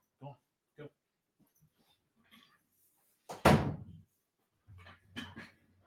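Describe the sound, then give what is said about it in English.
A few soft thumps, then a loud scraping bang of a door being shoved open, followed by scuffling and faint dog noises as more dogs push their way into the room. “More dogs discover that they can break into my room here.”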